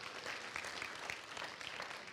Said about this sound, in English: Come on, give yourselves a hand for being good today. Come on, give yourselves a hand. Come on, clap.